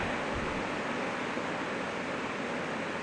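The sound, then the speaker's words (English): Steady rain falls in a continuous, even hiss with no breaks or distinct drops, holding a constant level throughout with no voices present. “Thank you, God, for giving us wonderful rain.”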